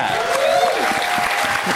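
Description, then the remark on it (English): A talk show audience claps for news that the TV show Baskets starts shooting season 4 in February: a steady, dense, even patter of many hands for a couple of seconds at a fairly loud level, with a brief cheer rising over it partway through. “You can clap for that.”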